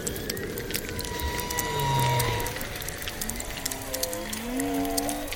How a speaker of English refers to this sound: So whale song is the most obvious example of this.